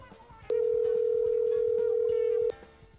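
A steady, loud phone dialing tone holds at a single pitch for about two seconds while a call is placed, starting and stopping abruptly, over faint background music.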